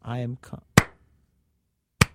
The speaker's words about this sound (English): Why are you clapping?